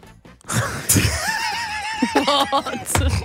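A tired person gives a long, drawn-out yawn, a breathy intake sliding into a voiced groan that wavers and falls in pitch, loud, with no other talking.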